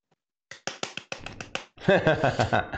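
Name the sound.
hand clap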